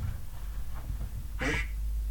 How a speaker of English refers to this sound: What the hell is that? Where's that duck? Did you hear that?